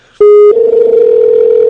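A Skype call opens with a short clean beep, then a steady, loud dial tone hums continuously and uninterrupted, with no voices over it.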